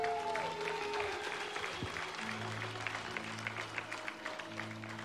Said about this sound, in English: So first off, I just want to start by saying Happy Mother's Day to all the mamas in the house. Yeah, let's give our mums a clap.